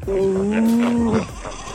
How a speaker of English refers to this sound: Because researchers found that Cape fur seals display the fastest mother-to-young vocal recognition of any mammal, even knowing their pup's squeaky cry just 2 hours after birth.